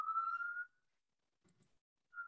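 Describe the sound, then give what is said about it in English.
An emergency vehicle siren wails outside, a steady rising tone that fades out, then briefly sounds again after a quiet pause. No one speaks. “Sorry, sirens.”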